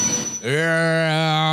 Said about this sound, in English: But look at that fucking train is loud. Right. Jeez Louise.